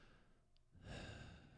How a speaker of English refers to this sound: Yeah, he's just breathing like a fucking creep.